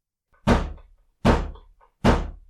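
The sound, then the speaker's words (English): Three heavy fist thumps rhythmically against the wood of a door, evenly spaced about three-quarters of a second apart, each a loud, booming knock that dies away quickly before the next. “The angel called out throatily, thumping his fist against the wood beside Crowley's shoulder rhythmically.”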